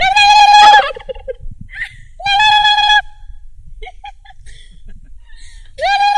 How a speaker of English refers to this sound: Can you get them to gobble for us? Or is there a trick?